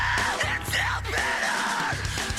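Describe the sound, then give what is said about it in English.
Loud, harsh screamed vocals from a male screamer over a dense, distorted band, the raw shouting voice sustained across the whole stretch with heavy guitars and pounding low end beneath it. “Can you imagine practicing this? I gotta practice my screams.”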